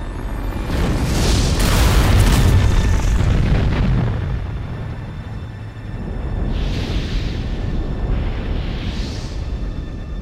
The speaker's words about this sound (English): They use the last escape pod to save themselves as a rocket safely explodes.